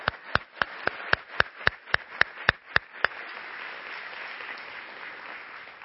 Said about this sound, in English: In fact, let's just show our appreciation. They're not even here, but maybe if we're loud enough, they'll be like, why were people clapping so loud? And say, we wanted to thank you for taking care of our kids. So let's give all them a woo!